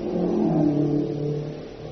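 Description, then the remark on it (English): Japanese staff cars rumble past, hurrying toward the west gate of a town, with a steady, rising engine drone, continuous, the motors revving slightly as they go by, with no voices heard. “Wait, let those cars pass.”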